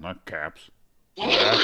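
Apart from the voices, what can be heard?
stifled sneeze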